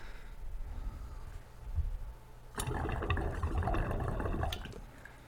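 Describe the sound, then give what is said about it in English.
Low rumbling background noise gives way to a burst of busy, gurgling air bubbling through water in a glass recycler's perc, fairly loud for a couple of seconds, then easing off at the end. “So if you saw, you'll see, you can see like the air like bubbling through here too.”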